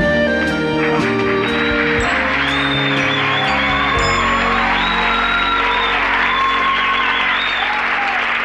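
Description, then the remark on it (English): A studio audience of a Gary Marshall show breaks into sustained, loud applause with whoops and cheers as the character Al enters his newly established Italian restaurant, a dense wash of clapping under bright musical tones that carries on steadily for the whole stretch. “And this being a Gary Marshall show with recognizable faces, even the most tertiary of characters get a lengthy round of applause.”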